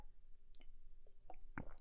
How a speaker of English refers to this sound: Take a drink of this water right here.